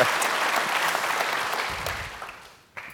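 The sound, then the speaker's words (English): An audience at the Reagan Library applauds steadily to welcome General James Mattis, America's 26th Secretary of Defense, a dense wash of many hands clapping that slowly fades toward the end, followed by a brief faint burst as the clapping trails off. “Still clapping like that at the end.”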